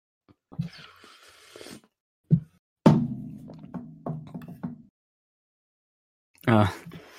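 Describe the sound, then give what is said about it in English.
A metal flask used as a water bottle is slammed down: a small knock, then a loud clunk that rings and slowly fades over about two seconds. Someone talks briefly before and after. “And unedited bottle slams.”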